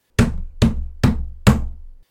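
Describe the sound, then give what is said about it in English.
Four heavy, booming thumps land in a steady rhythm, loud, each with a deep resonant body like a fist pounding hard on the door of an apartment. No voices are heard. “I could hear pounding on the door, and had a horrible thought it was my landlord wanting to crucify me for not paying the rent.”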